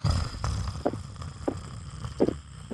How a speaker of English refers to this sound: No, I only hear your snoring.